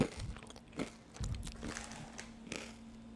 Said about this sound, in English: Sometimes, I even just eat it raw, like this. Mmm, so crunchy. It's delicious.